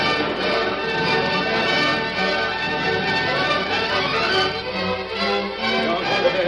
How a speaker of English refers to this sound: Then suddenly the Lone Ranger and Tonto heard the signal they had been waiting for, the clear notes of a bugle. Soldiers are riding to the attack, Tonto.